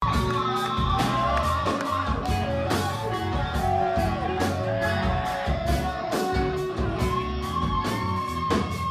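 Loud, dense live music with heavy, regular drum hits pounding through a roaring concert crowd during a band's breakdown, shouts and cheers blending into the wall of sound.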